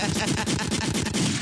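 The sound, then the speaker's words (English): A loud, dense barrage of gunshots fires in rapid succession, the sharp cracks overlapping into near-continuous automatic fire that fills the whole moment. “Gunshots.”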